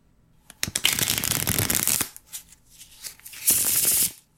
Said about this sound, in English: If you're a magician, you know what this is, or you like playing cards. Yeah, it's shuffling. Riffle shuffle. Riffle shuffle.